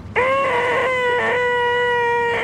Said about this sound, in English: It sounds like a CRT monitor or 20 CRT monitors doing that little squeal that you need to like turn them off and on to get rid of. Yeah, awful like sound.